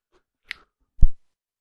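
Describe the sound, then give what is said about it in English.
A quick sip of a drink: a sharp little mouth click, then a short, soft slurp and gulp a moment later, with quiet in between and no talking. “Little sip of a beverage.”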